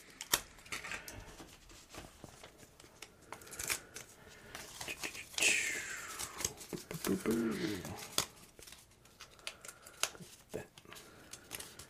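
Quiet snips and papery rustles come in short irregular bursts as scissors work through a strip of paper, with soft handling noises between cuts.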